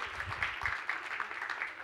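A group applauding the Hydro and Splash kids, with many overlapping hand claps forming a steady, dense patter that stays fairly even throughout and sounds soft.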